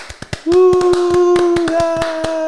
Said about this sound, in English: Cue it up. Let's get the button. Let's get the clap.